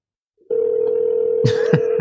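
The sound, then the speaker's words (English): A steady telephone dial tone starts abruptly after a brief silence, with two short dialing beeps or clicks punctuating it near the end, as someone calls a person back on the phone. Clear, no voices. “Let's try him again. Let's see if he picks up.”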